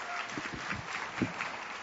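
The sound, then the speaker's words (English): A church crowd applauds a fourth and fifth grade pastor as he comes up, with a steady, dense wash of clapping that holds at an even, moderate level throughout, a few louder claps standing out near the middle. “So let's give him a big round of applause as he comes.”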